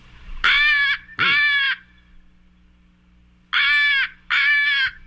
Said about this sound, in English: But it does sound different, doesn't it? It does sound different. This is a Northwestern crow we're hearing.